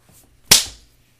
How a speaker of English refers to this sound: She slapped his ass so hard I thought his head would spin backwards like a damn owl.